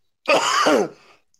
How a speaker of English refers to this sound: Please note that is not a COVID cough. That is not a COVID cough. That's a chronic cough.